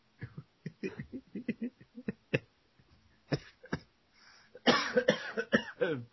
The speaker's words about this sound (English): Yeah. I started coughing. We need a cough button on these things.